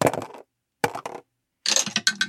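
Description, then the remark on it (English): Dice clatter across a tabletop in three short bursts separated by brief pauses, moderately quiet, with a rattling, tumbling sound and no voices, as dice are rolled for Tech and Iron Wolf in a game. “All right, so Tech gets three of those dice, and Iron Wolf gets one. What are you both rolling?”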